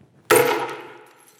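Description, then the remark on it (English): A single sharp crack as a ceramic cup, used like a hammer, shatters, followed by a bright ringing clatter of fragments that fades out over about a second. “This cup is going to break.”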